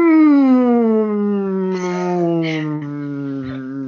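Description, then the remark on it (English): A human voice imitates a whale call with one long, loud, moaning tone that glides slowly downward for several seconds, with a few breathy bursts near the end. “She's a whale.”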